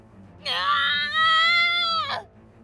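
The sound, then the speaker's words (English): A single high-pitched shriek of pain from a boy as tektite beasts bite his leg and tear into his coat, sustained for nearly two seconds and loud, then breaking off with a sharp downward crack. No other voices. “He screamed, but he could no longer move as they tore into his coat. Link shrieked”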